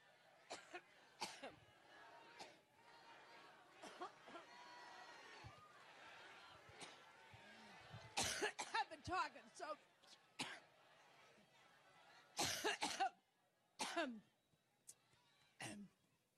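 Hillary Clinton coughs repeatedly in sharp bursts, some in quick clusters, with throat clearing between them and a faint murmur of a crowd in the background.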